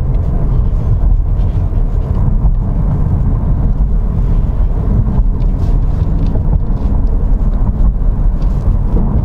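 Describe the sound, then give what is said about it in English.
A Jaguar car with a 3-litre turbo engine being driven around Millbrook's Alpine course, with hairpins, hills and gradients. Its engine and road noise form a loud, continuous low rumble with no pauses and no one speaking. “So I'm going to take this now around Millbrook's Alpine course, which means I'm going to be giving it a go around hairpins, up and down hills and gradients.”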